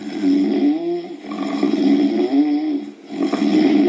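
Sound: loud snoring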